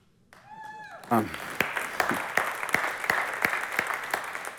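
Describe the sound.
A brief voice is followed by an audience breaking into loud, sustained applause, a dense wash of clapping punctuated by sharper, fairly regular claps that continue steadily to the end.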